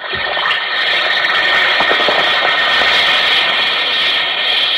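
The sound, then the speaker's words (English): An Alka-Seltzer tablet fizzes in water, a dense, steady hiss of bubbles with tiny crackling pops, fairly loud and unbroken for about five seconds, with no voices. “Listen to it fizz.”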